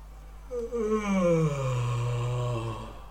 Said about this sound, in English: Echoes out throughout the woods. And Big has entered the battle. Just as Lahan dies. Oh my god. So as you hear this yawn, the nightcap staff is in Big's left hand, and stepping out of it are many, many elves in animal form.